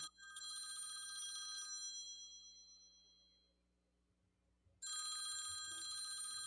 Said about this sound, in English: Is that upstairs, or is that the phone in the living room? Phone in the office. Should we get that? Still ringing. Let it ring.